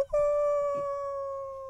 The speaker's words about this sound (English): And at that moment, they heard a howl in the distance.